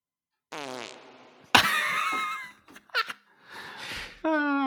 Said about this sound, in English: Oh, the fart. Why is there so much reverb on it? Because it's fart reverb. Can you play it again?